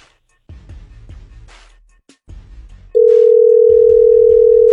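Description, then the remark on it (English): A phone line's ringing tone from a call placed by the Y107 Morning Show comes in loud, a steady unbroken electronic hum that starts partway through and holds to the end, after a stretch of muffled low rumbling sounds. “Oh, it's ringing.”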